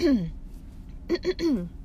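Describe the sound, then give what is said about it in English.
A brief voiced throat-clearing after eating a bowl of ice cream: one drawn-out, downward-sliding grunt, a short pause, then three quick rough bursts in a row, the last sliding down in pitch. No one speaks. “And I didn't bring water or coffee in here with me, so I'm sorry that I keep clearing my throat.”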